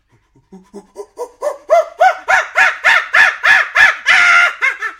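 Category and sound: vocal imitation, voice imitating a pig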